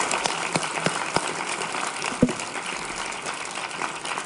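An audience applauds steadily for about four seconds, a dense crackle of many hands clapping at moderate volume, with a few sharper individual claps standing out and no voices.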